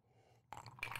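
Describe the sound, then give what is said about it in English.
Mostly melted ice cubes clink against a glass as it is tipped for a drink, two short bright rattles about a third of a second apart, fairly quiet, with no voices. “Yeah, that was basically melted ice. I need another ice cube there.”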